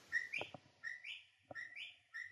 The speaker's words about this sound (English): It's a clock. I'm sitting it's here. A clock. It's a clock because it's 1 o'clock right now. So the clock went off and it's a bird clock. So it played some bird.